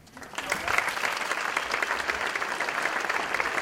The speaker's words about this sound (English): And she did that under 10 minutes. Next round of applause.